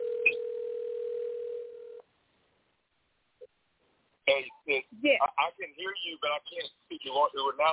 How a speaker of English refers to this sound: Okay. Well, I'm going to dial him off of this phone and see what happens.